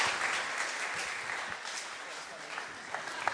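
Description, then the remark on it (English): An audience applauds the volunteers, clapping steadily in a dense, continuous wash of many hands at moderate volume, sustained throughout without a break. “Can I have a round of applause for my wonderful volunteers?”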